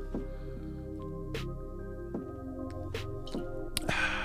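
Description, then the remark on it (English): Someone quietly sips water: a few soft gulping clicks spaced about a second apart over a steady low hum, ending in a brief rustle. No one speaks. “Hold on a second. I want to take some water.”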